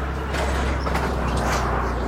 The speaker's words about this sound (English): Sorry. Truck just went by.